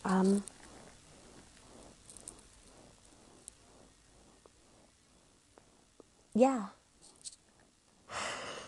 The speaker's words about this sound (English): Oh, thank God I'm not actually doing a professional broadcast at the moment. Yawn.